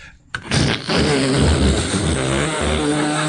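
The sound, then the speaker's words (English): A voice imitates a vacuum cleaner with a steady, loud droning hum that starts abruptly and holds for about three seconds, harmonic and buzzy with a slight waver in pitch. “Starting with the vacuum cleaner.”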